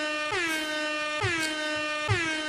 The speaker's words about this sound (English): Hit the air horn, dude.